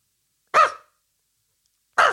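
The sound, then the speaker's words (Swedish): Two short, sharp dog barks spaced over a second apart, loud against silence, apparently performed by a human voice imitating a dog. “Hunden.”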